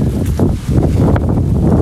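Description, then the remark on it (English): Wind buffets the microphone in a steady, loud low rumble with irregular gusty surges throughout, and no voices are heard. “It is so windy.”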